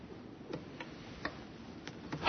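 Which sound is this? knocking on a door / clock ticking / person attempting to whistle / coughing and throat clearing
clock ticking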